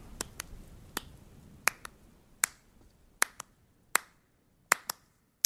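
Sharp, crisp handclaps, about a dozen over a few seconds, in a loose uneven rhythm with some coming in quick pairs. No one speaks.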